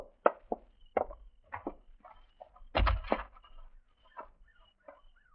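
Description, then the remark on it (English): A door is opened as people go through it fast: a run of soft knocks and clicks from the handle and latch, then a fuller thud as it swings, followed by lighter scattered taps. “Let's get through the door fast and step to the side.”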